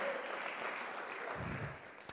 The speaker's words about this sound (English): Thank you. Can we give her another round of applause? That was amazing.